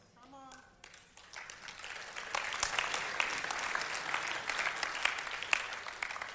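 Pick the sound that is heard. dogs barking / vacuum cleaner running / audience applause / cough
audience applause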